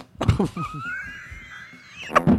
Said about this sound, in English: There hasn't been a fart being played on this podcast in 2 years.